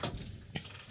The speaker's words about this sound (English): People are gonna hear the door open because I just opened the door. Oh, right. Just came in? Just to let air in.